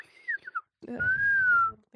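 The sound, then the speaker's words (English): A person whistles an imitation of robot droid beeps: a few quick, chirping tones, a brief pause, then one long sustained whistle with breathy noise beneath, fairly loud. “Nice whistles, guys.”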